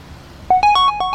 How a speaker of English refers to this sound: I jumped. Adrenaline spiked. I looked down at my phone. It was a text from Matt.